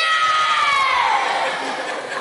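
A crowd of kids and adults cheers and shouts together in a loud, sustained burst of excited voices, dense and continuous, easing off slightly toward the end.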